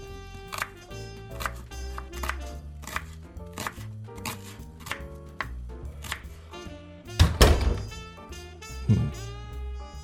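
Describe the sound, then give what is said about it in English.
The chief chops vegetables with a knife on a board in a steady rhythm of crisp, regular strikes while listening to jazz music, with a couple of heavier thuds near the end. “Later, the chief chops vegetables while listening to jazz and waits for Bishop.”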